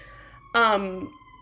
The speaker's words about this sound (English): Sorry, I'm closing this, so. You're good. You guys don't have to hear these sirens that are happening.